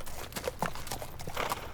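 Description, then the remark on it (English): Horse hooves clip-clop in a steady, uneven rhythm as horses are saddled up, several sharp knocks spaced through the short stretch, fairly quiet, with no one speaking. “While Dottie saddles up her horses, why don't we take a little break from our equestrian adventure?”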